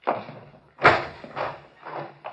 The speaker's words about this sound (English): Here, I'll get the door.